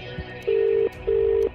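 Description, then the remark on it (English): A telephone ring tone sounds once as a double burst: two short, steady electronic buzzes with a brief pause between them, clear and fairly loud over faint background hum, as a radio network places a call in a rollover prize draw. “I'm going to make the call across the Hits Radio Network now.”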